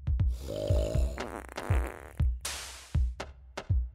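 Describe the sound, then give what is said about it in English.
A comedic fart sound effect: a string of low, buzzing rumbles and squeaky blats with a rhythmic, snore-like pulse, loud, with no talking. “Did you also know that we fart more when we are sleeping than when we are awake?”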